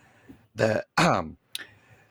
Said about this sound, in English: I will edit things out, like that pause and that cough, on the audio version. Those will not be edited out in the video version.